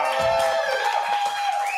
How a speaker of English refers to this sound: Good throaty crowd here today